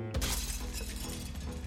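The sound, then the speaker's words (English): Window glass shatters with a sudden loud crash as a book is hurled at it, followed by a bright, sustained spray of tinkling, scattering shards that continues for over a second before thinning out. “Without a second thought, I picked up my book and hurled it at the window, shattering it.”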